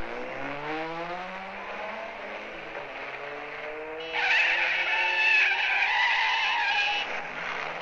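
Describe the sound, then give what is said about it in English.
In a film scene with Cary Grant, a car driven very fast while being followed revs and accelerates hard, then tires let out a loud, sustained screech for a few seconds as the car skids, with the engine roaring underneath throughout. “The driving is very fast. The car is gorgeous.”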